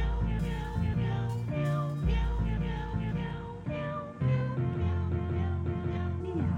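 Cat meows used as musical samples ride over a heavy, thumping hip-hop beat in a rap remix from a Kickstarter-funded remix album, repeating in a steady rhythm at full volume through the whole stretch of the track.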